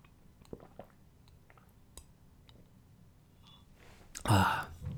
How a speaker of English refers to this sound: And I just need a swig of water. Hang on. We always have a bit of water drinking on this show.